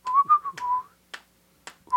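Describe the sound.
Someone whistles a short melodic phrase from a film score, steady pitched notes gliding and sustained, broken by a couple of sharp breathy bursts before the tune resumes at the end.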